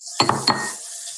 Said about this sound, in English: Sound like they're frying chicken and then spraying to get the grease off the counter.